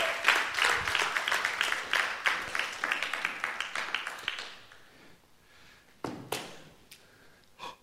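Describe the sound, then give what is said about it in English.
An audience at a church gathering breaks into a round of applause for two people as they take their seats, a dense patter of many hands clapping for about four seconds before fading out, followed by a few scattered claps and faint rustling. “So I'd just love you to give them a round of applause while they take their seats.”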